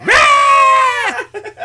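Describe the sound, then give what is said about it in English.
A person imitates a screaming goat: one loud, strained, bleating wail held for about a second, then trailing into a few brief, softer vocal sounds. “He rolls over, and it's one of those screaming goats that you see videos of.”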